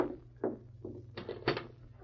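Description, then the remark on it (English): A door is opened to let a man in and then shut, heard as a short run of quiet creaks and knocks, with a firmer thud near the end, over a steady low background hum. “Shut the door quick.”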